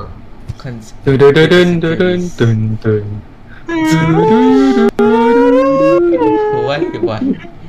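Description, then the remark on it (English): A voice imitates the eerie X-Files theme tune intro: a few choppy syllables, then long wavering, howl-like sung notes that slide up and down, loud. “You don't know …, the X Files in team intro.”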